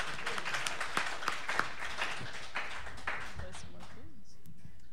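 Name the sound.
audience applause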